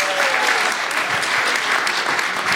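A crowd applauds steadily, a dense wash of many hands clapping at once, fairly loud and sustained throughout with no individual claps standing out.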